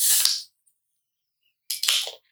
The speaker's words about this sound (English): So upon opening, open the can and wait a moment for the nitrogen to release.